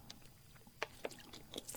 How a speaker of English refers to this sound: I need to take a drink of water there.